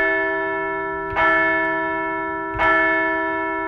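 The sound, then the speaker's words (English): A large bell, rung as the Phillies get ready for Game 2 in Atlanta, strikes twice about one and a half seconds apart, each loud clang leaving a long, shimmering ring that sustains between and after the strikes. No voices. “Let's ring the bell as the Phils get ready for Game 2 down in Atlanta.”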